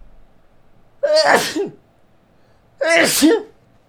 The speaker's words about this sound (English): I need to sneeze.